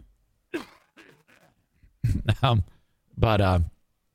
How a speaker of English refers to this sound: But hang on, I gotta clear my throat.